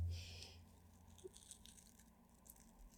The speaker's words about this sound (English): Can you stop chewing on that Biscoff? It's making a cool noise in the...